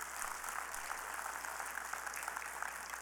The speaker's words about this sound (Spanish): Den un aplauso al Señor, se lo merece.